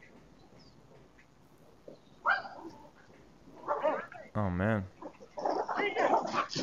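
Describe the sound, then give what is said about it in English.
Small dogs bark and yelp at a bear in sharp, excited bursts, including one drawn-out wavering howl, fairly loud, with a man's voice briefly exclaiming over them. “Got the dogs coming.”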